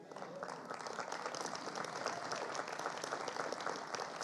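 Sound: polite golf clap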